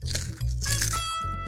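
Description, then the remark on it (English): Crisp, crackly crunching of a spicy hot cheese puff snack being chewed, several bursts of bites in quick succession, fairly loud with a low rumbling undertone and no talking. “can you close us out with one more crunch?”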